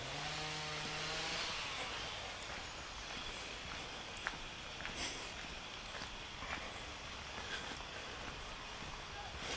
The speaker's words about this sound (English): Sounds like they're doing some work up here. Got some chainsaws and heading into their noise.